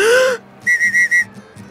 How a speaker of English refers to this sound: Which whistle sounded like a referee's whistle? I agree. Whistle number three. That's it. That's my real whistle.